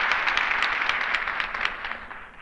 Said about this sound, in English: You know, not every Tom, Dick, and Harry rates applause like that.